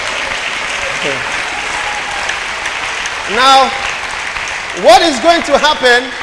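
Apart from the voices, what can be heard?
audience clapping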